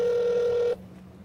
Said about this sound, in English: So let's see if we can get her on the phone. ringing. I probably should put her on speaker, shouldn't I?